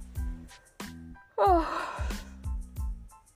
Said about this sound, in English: Oh, I shouldn't have yawned, but yeah, this is real life. I'm reporting to you guys from the life on my bed.